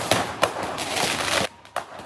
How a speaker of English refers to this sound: It's irresponsible, it's reckless, it's criminal. And Toronto police are now investigating that. And this isn't the only case of fireworks set off on buses and stations since Victoria Day.